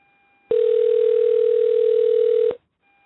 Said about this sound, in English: All right. Oh, things are ringing.